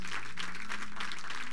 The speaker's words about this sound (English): Come on, clap your hands for what God is going to do.